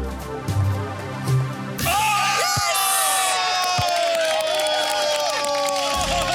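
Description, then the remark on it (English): A crowd of voices cheers and shouts excitedly to encourage a woman taking blindfolded basketball shots at buckets, swelling suddenly after a quieter stretch into loud, sustained whoops and rising yells that carry on to the end. “By making her think she sank those blindfolded shots, and by cheering and giving her positive reinforcement, it's almost like we hacked her self-confidence and got her to believe more in her natural abilities.”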